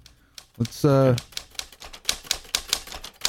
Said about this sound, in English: Let's get the typewriters out.